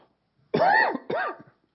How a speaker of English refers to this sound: I'm so used to coughing this way, and that's the side the mic's on.